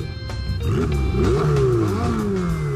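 A car engine revs up loudly, its pitch climbing and dropping in a few quick surges before settling into a steady, throaty drone. No voices are heard.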